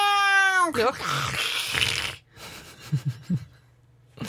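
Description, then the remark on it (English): A voice imitates strong howling wind that sounds like a cat-fight yowl: a loud, strained wail that bends downward, then a long breathy, hissing rush with a few short grunting bursts at the end. “It's the wind. Sounds like cats fighting.”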